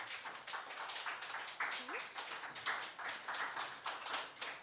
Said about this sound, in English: A big round of applause for